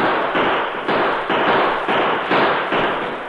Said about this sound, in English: Keep firing on them while we retreat up over the top of the hill.